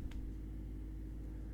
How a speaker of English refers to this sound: Do we also have these neighbors that rev their cars? Like these big Subarus, which are cool. I don't have an issue with that, right? But sometimes they just leave them running or they'll rev them in the driveway.